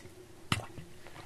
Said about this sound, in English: It's kind of hot today, so I'm drinking water while I'm describing this to you.